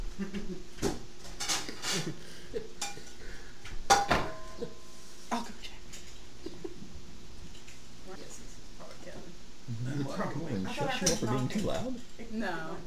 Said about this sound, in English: Sounded like it was him cutting the pizza.